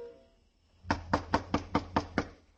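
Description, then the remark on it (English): Seven sharp knocks by police on a locked door on a street under the New York, New Haven and Hartford Railroad bridge, in a steady, even rhythm, loud, following a brief quiet moment with no voices. “Right now it was a street where Paul's murderer might be waiting in a dark room behind a locked door, waiting for a knock that had to come.”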